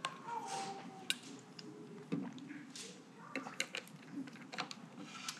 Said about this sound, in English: I'm gonna take a sip of water and then I'll read this to us, guys.